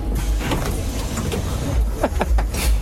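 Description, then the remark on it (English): A steady, heavy low rumble of a bus engine fills the space, with a few clunks and rattles over it, as if from inside the vehicle. No one speaks. “Right, that bus literally stank of fish.”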